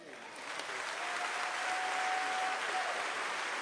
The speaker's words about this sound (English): Come on, let's give the Lord a hand clap for him. Come on now. Praise Jesus.